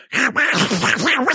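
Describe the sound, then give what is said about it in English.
A person imitates Donald Duck, singing in a buzzy, nasal, squawking voice. A few quick rising and falling pitch swoops run together for just over a second, moderately loud and unaccompanied. “That is so much better than my Donald Duck.”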